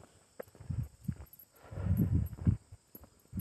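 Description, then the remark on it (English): Heavy hooves of cows plod unevenly over soft ground as they walk across a pasture in a valley, with faint rustling and a handful of dull thuds, quiet at first and then denser and louder toward the end. “These cows are walking across the pasture, across the valley here, and it's really beautiful.”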